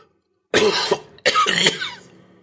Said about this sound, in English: From the window, Megan looked back at the obelisk, wincing at how painful the last cough had sounded. It occurred to her how cramped it must be for him in there, trapped in the dark with no fresh air.